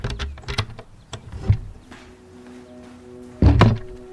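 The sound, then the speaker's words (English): An old wooden door creaking on its hinges, with a few knocks and rattles, a long low groaning tone, then a heavy thump as it shuts. No one speaks. “It doesn't sound much like a modern door. It sounds like a door from like the 1800s into a barn or something.”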